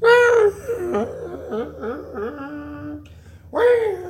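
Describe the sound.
A person's voice imitates whale song: a loud opening wail, a run of shorter dipping, warbling hoots, then another rising moan at the end, with no other sounds.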